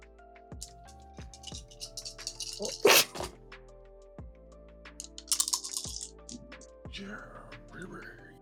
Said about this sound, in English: Well, if you're just leading again and trying to get them out, I think it's the four dice is what you rolled the last time. Yeah. But I need everybody to roll four dice.